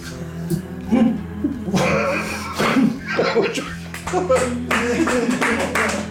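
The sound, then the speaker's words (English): Light, scattered applause of a modest crowd, quick irregular claps blending together over a steady murmur of voices and some harmonic vocal sounds. “There is polite applause.”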